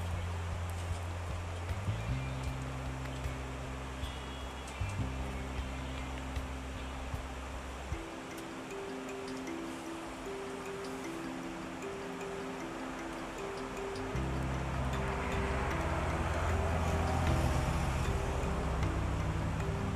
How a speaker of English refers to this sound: Well, I'm gonna give us about like 2 minutes to listen to the river in peace, so yeah.